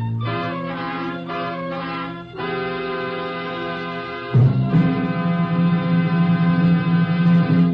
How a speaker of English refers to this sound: Chimes mean good times on NBC.